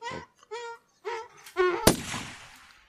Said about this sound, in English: Oh, it's no fart, it's the gunshot. That's upsetting. I haven't played that one in a long time.